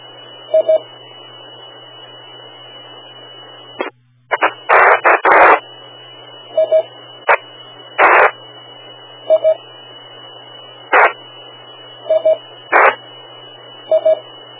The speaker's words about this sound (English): Okay, if that was your test, something was breaking the repeater squelch, but we were just getting static. I wasn't hearing any audio.